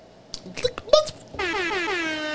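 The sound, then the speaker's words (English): A loud, blaring air horn blast cuts in after a brief burst of speech and holds steady for about a second, with a bright, brassy tone and slightly wavering pitch. “The air horn's a little loud.”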